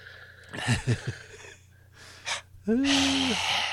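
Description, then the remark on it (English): Someone imitates a scary, raspy gasping breath. A few short vocal sounds and a quick breath come first, then one long, loud, strained inhale. “Just do a scary breath and then a little neck shake.”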